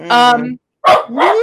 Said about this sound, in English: My damn dog. See, he's pissed too.